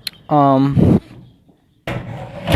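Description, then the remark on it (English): A wooden door at home swings shut on an animal hiding outside: a sharp, tonal hinge creak lasting about half a second ends in a dull thump, then brief quiet before a burst of rustling, scraping noise. “I just closed the door on him, but I guess there's food.”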